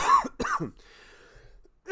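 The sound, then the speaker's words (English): Two quick, harsh coughs in close succession, fairly loud, followed by a short quiet stretch with faint breathy noise. No talking. “But I had this cough that I still have a tiny bit, that where my chest would burn.”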